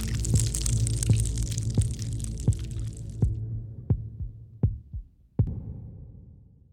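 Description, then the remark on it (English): A steady, low heartbeat from a hospital heart monitor thumps about nine times at an even pace, with a hissing wash underneath that cuts out partway through, leaving the muffled beats alone. “He gestured to my bandaged foot, which throbbed in time with the heart monitor.”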